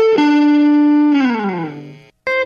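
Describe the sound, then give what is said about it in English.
Auto-tuned fart sounds form a buzzy, pitched melody: a loud held note that slides downward, then a brief silence before another note begins. No one speaks. “So it's auto-tuned farts.”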